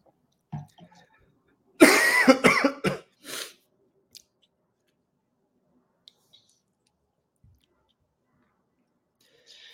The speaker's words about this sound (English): Sorry, I just got a bit of a cough that came. Take your time.